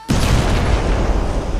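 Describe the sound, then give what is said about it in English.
A sudden, loud blast erupts as a lit stick of dynamite explodes in a hole, rolling into a dense, rumbling roar that sustains without fading, with lingering debris and boom. “Immediately after the explosion, the hole started sucking in everything around us with the strength of 1,000 tornadoes.”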